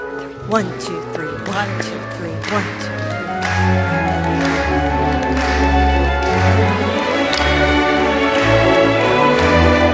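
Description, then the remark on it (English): A crowd claps along to a lilting waltz tune, their sharp hand claps landing in a steady one-two-three pulse over the sustained melody and bass. “So let's start clapping.”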